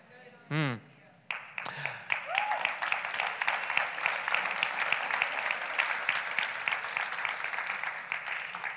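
An audience breaks into sustained applause, a dense, steady wash of many hands clapping that continues for several seconds after a brief spoken exclamation at the start.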